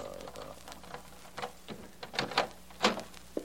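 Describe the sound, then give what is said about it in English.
A door is unlatched and opened, with a handful of sharp clicks and rattles spaced irregularly over a low, steady background hum. “Open the door, Joey, please.”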